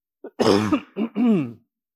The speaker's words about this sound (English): I'm going to cough here, pardon me.